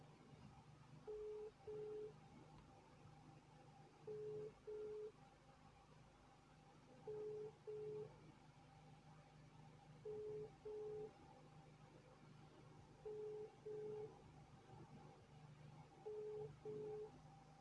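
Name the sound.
phone call ringing tone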